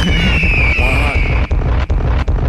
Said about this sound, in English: A lot of fucking bombs right now. Many bombs. Several explosions.